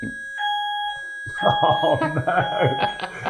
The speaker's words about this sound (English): Fire alarm. Yeah. Is this a Friday morning fire alarm? Yeah. It's just standard. It's an actual test.